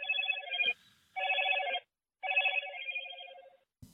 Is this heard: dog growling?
no